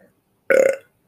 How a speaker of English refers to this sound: Sorry for the dinner burps there. That's some sausage, cabbage, and potatoes coming at you.